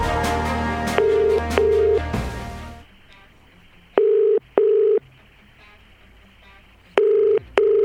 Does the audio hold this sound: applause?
no